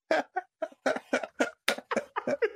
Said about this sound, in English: Jesus Christ. Can't stop coughing. Is he dying? I don't know.